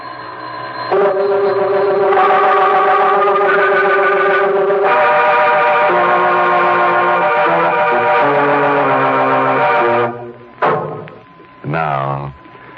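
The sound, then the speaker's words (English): A bell rings with a loud, steady tone with a buzzing, harmonic edge, holding for about ten seconds, shifting pitch a few times, then cutting out into a couple of short bursts. “The bell is still ringing.”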